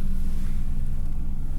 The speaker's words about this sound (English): Helicopter going by?